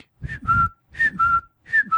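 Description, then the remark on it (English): A whistled imitation of a cuckoo call, as done by Cynthia Lee Fontaine in season eight: three two-note phrases, each a higher note dropping to a lower one, repeated in a steady rhythm at moderate loudness with no talking. “When Cynthia Lee Fontaine is doing the cuckoo sound.”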